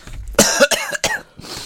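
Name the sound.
coughing fit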